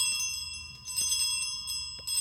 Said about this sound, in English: It's like a dinner bell.